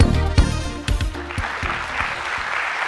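A morning audience applauds the speaker walking up, with steady, dense clapping, a bright crackle of many hands blending into a continuous wash, with a few sharper low thumps early on before it settles into an even roar.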